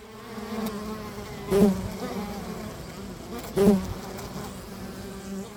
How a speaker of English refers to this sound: I bet you did, as this week's topic is bees. I'm sure you've seen bees buzzing around outside of your home, most likely visiting flowers.